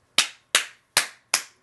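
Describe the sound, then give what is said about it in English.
Four crisp hand claps in a slow, even rhythm, each a sharp bright snap that dies away quickly, with silence between them and no voices. “I need to give you a round of applause for such an inspired email address.”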